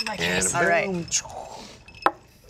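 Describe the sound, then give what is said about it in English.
A single sharp, bright clink of glasses touching in a toast, coming just after an excited voice cheers. “So cheers, everyone. Thank you so much for 100 episodes.”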